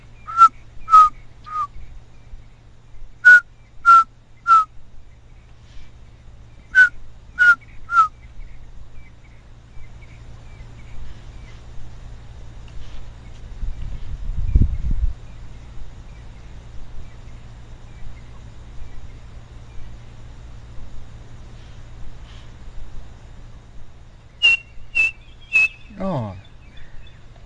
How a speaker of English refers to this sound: A little black and white bird with a chestnut band across its white breast, and it's got quite a characteristic call. I think keep the recorder running, because I think if we're lucky we might get to hear it. It makes a call, three blind mice.